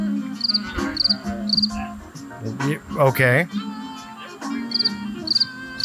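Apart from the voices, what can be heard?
crickets chirping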